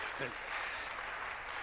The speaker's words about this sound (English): Clap, put your hands together for them.